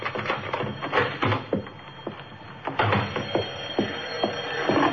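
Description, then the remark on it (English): Keys jingle and a lock clicks and rattles as a front door is unlocked by someone just home from work on Saturday, April 18th, at 8:46 p.m., with a string of sharp, irregular metallic clicks over a low background hiss and no voices. “I'd just gotten home from work, and I was unlocking my front door.”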